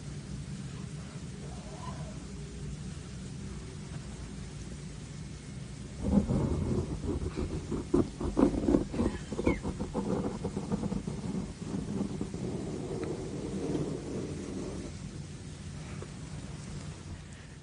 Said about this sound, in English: Noel just adjusted the gain, essentially, on our microphones, and we sat here and listened to it. And to us, it sounds like white noise.